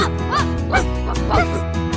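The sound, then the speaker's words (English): A dog barks three times at a moderate, uneven pace, clear, over a steady musical backing. “Dogs.”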